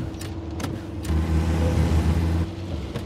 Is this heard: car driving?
yes